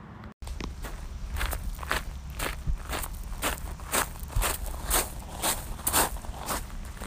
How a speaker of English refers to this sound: And that, my friends, was a short snippet of my squishy shoes as I walked away from that fun little swim. My shoes were full of water and they were squish squashing as I got back to the trail.